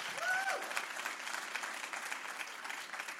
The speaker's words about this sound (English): So you should applaud that.